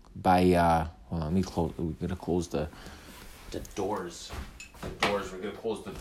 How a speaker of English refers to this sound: We're gonna close the door because we're in an office. We're in a undisclosed location.